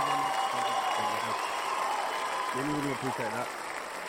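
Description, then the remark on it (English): A crowd claps steadily in a dense, continuous round of applause lasting several seconds to welcome a guest, with voices calling out over the clapping before it tapers slightly at the end. “People, give it a huge round of applause.”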